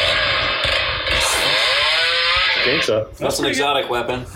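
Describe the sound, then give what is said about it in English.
A chainsaw roars loudly and steadily, its pitch rising and wavering as the engine revs, then briefly dropping before revving again. “Well, chainsaw?”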